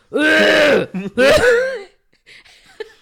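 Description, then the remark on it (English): A voice imitates a man's harsh, aggressive throat-clearing cough in two loud bursts, followed by faint rustling and a quiet trailing sound. “And then when he does that cough, though.”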